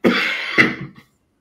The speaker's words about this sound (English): Excuse me, again. It's bloody cough.